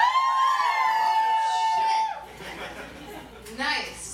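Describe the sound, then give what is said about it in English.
A single loud, sustained whoop rings out from an audience member at a comedy show, then fades into scattered crowd noise and cheering, with another brief burst of whooping near the end. “So welcome to those of you who cannot woo.”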